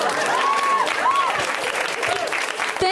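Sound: audience clapping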